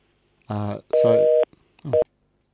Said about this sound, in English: Apologies for that dial tone. That cut out a little bit faster than I was expecting.